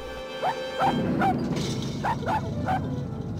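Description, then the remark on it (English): A dog barks six times in two quick bursts of three, sharp and yappy, over a steady background hum with no one talking. “He steps outside and finds the dog that he had nearly run over.”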